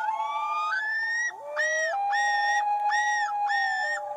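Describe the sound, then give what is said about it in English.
A loon call played from an online search for loon sounds at night: a long, wavering wail that climbs in pitch, followed by four repeated, rising yodel-like notes over a steady lower tone. Loud and continuous, with no talking. “It says, I looked up loon and I was going to put sounds. And in the second search is sounds at night.”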